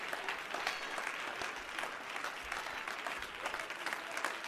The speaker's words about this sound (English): Somebody get on your feet. How about that? And would you clap your hands and give up some praise to Jesus right now?